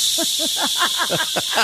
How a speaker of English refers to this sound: There's the segment. All static.